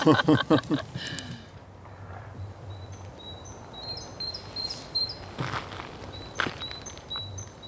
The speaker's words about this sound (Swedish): Det är fåglarna som tror att det är vår. Ja, fåglarna som tror. Och så även ljud från isen. Eller hur? Det låter helt... Ja. Det sjunger i det.